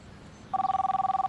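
A telephone starts ringing after a brief quiet moment, its bell tone trilling loudly in a rapid, steady pulse, with no one talking.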